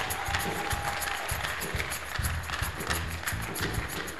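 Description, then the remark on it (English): An audience claps for Jesus steadily for a few seconds, a dense wash of many hands clapping at once, fairly loud and sustained without any talking over it. “Clap for Jesus.”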